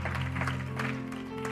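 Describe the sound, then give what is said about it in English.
A church audience claps for the preacher's word in a dense, continuous patter of applause, with sustained low organ-like tones holding underneath throughout. “Would you give him a hand clap for his word tonight?”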